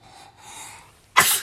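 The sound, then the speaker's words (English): A single sharp sneeze bursts out loudly after a soft breathy intake, with no talking. “Bless you.”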